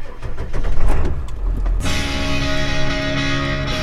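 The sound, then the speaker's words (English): A pickup truck loaded with feed and a massive bucket of bread slices rumbles steadily, then shifts into a broader, brighter droning hum with steady tonal whine as it drives toward a farm, with no voices. “I joined him as he loaded up his truck with feed and a massive bucket of bread slices and headed toward the farm.”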